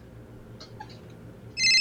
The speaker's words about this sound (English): Hold on, wait. Now my phone is ringing.